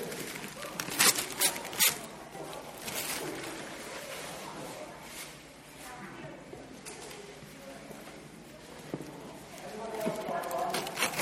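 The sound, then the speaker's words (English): Busy rustling and ripping of wrapping paper as a wrapped gift is opened during a service, with sharp tearing bursts near the start and a steady crinkling scrunch throughout as the wrapping is pulled away. “all that time you spent wrapping is disappearing.”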